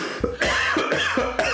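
A person coughs three times in quick succession, harsh and chesty, fairly loud, with short wheezy catches between the bursts and no talking.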